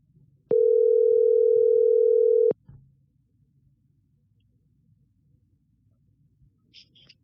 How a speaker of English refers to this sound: I should have like some sort of music to play in the background as like we wait while I dial a number on my phone.